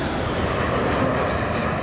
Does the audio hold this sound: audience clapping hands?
no